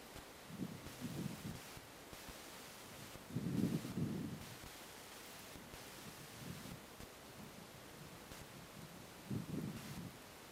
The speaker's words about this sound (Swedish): Jag försöker undvika att tala ovanpå vindpustarna, men det är svårt att avgöra vad som hörs och vad som inte hörs.